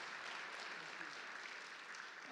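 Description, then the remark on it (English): An audience claps steadily to welcome a new pastor and his wife to the team, a dense, even wash of many hands with no breaks, holding the same moderate level throughout and with no voices standing out above it. “Would you welcome them by saying hello, clap for them, say hey, there you go.”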